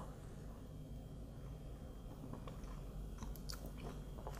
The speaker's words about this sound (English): These are sour cherries. Super delicious, super good, right? In a community park, and we've been munching on these.